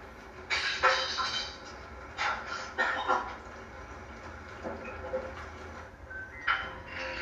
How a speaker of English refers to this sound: Got an engine like a train.